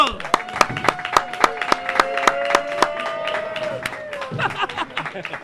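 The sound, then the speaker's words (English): Audience at a show applauding as the speaker's sponsor is introduced: a steady run of sharp, loud claps over about five seconds, with sustained whooping and cheering voices rising above the clapping. “Give a warm of a round of applause for my boy,”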